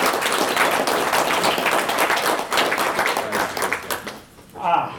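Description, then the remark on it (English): An audience breaks into dense, steady applause for three men presented with golf shirts, many hands clapping loudly for about four seconds before it thins out and fades, with a brief voice rising at the very end. “Can you give these three guys another round of applause?”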